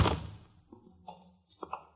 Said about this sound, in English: Come in. And shut the door behind you.